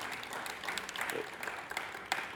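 An audience applauds together, a steady wash of many hands clapping at moderate volume with a few sharper individual claps standing out, filling the room for a couple of seconds.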